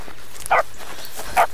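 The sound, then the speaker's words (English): Dogs barking: two short, sharp barks about a second apart, fairly loud and mid-pitched, with no one talking. “Here, boys, come on and go fetch.”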